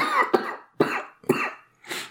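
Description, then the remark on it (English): A fairly loud fit of coughing: three harsh coughs in quick succession, about half a second apart, then a softer, breathy fourth cough. No talking. “So with my impending cough, I'm going to say that that's probably it for today.”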